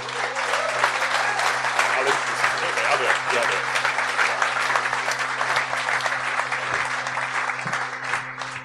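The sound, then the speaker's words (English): A live audience at a live show claps steadily for several seconds in a round of applause for the panel, a dense, even wash of many hands with no single claps standing out, plus a constant low electrical hum underneath. “But for now, please, a round of applause for our panel.”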